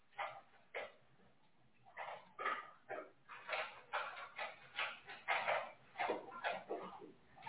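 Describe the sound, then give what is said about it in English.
A dog barks repeatedly in short bursts while eating, mixed with whimpering yelps, the sounds coming in an uneven, insistent rhythm with no talking. “Y'all probably hear the dog.”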